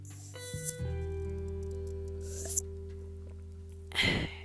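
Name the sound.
sipping water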